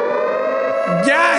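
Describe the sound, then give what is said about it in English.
A loud, steady siren sound effect holds one droning pitch, then wavers and sweeps upward near the end as a brief burst of noise cuts in; a voice may briefly sound underneath. “We need the fake news siren.”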